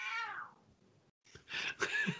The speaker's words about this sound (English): Yeah, I said Thor, cat in the background.